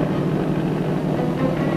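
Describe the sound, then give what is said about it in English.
A helicopter drones steadily overhead, a dense, continuous engine roar with a rumbling low end and a faint fluttering texture, holding an even loudness throughout with no voices. “We also haul rations, ammo, fuel, radio parts, you name it. Chopper Air Express, that's us.”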